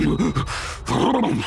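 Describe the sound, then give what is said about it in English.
A voice imitates angry, heavy breathing with strained grunts and groans for Rhythm the gorilla in a children's story, his cheeks bulging with anger. Two loud bursts are separated by a brief pause, with no other sounds. “Rhythm the gorilla blushed and put his cap back on his head, breathing heavily as his cheeks bulged with anger.”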